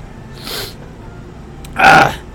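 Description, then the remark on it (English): A soft, breathy intake is followed a moment later by a single loud sneeze with a sharp, explosive burst, from a person who has a cold. No one speaks. “Okay, I got a little cold here today, folks, so if I'm coughing or sneezing, I'm not cutting it out.”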